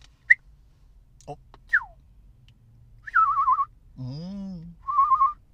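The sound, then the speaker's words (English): A burp comes out through a whistling gadget as a few short, warbling whistle tones, one lower and buzzier than the rest, preceded by brief squeaky chirps and clicks. “So if you hear that at any time during a show, it's when I'm burping.”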